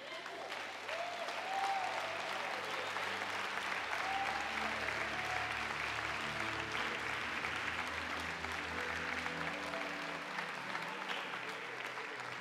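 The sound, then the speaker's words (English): A church audience claps steadily for about twelve seconds during a call for backsliders to come forward, a dense, even wash of many hands with no break, while faint voices and low tones murmur underneath. “This is the only church that claps and no one came.”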